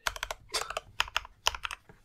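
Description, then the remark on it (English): Rapid typing on a computer keyboard, fairly quiet, with clusters of sharp key clicks arriving in quick irregular bursts over a couple of seconds; no one speaks. “For those of you who wanted keyboard ASMR, here you go.”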